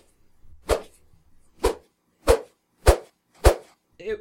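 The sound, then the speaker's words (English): Five sharp, loud whip cracks snap out one after another at a brisk, fairly even pace, followed by a short vocal sound at the very end. “with the whips, quickly.”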